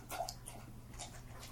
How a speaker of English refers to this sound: Could your dog make more fucking noise eating?